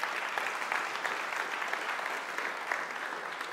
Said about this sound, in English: Can we really just thank our sound and media team this morning? There's so much hard work that goes on behind the scenes that we are unaware of. Let's just give them a big round of applause.